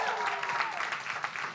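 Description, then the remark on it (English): A crowd applauds steadily at the start of a show, dense clapping with faint voices mixed beneath the sustained burst of hands. “Keep clapping, keep clapping. Keep the love going.”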